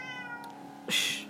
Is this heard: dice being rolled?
no